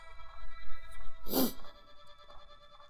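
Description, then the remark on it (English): A puppy named Oliver gives one short, sharp bark, standing out against a quiet, steady electronic hum in the background. “Oh, you don't need to bark, though. That seems unnecessary, doesn't it?”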